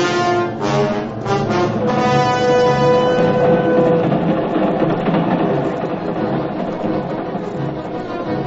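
A subway train in Midtown New York rumbles and clatters steadily and loudly throughout, with a brief cluster of high whining, horn-like tones near the start before settling into a continuous roar.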